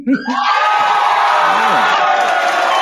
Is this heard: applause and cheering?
yes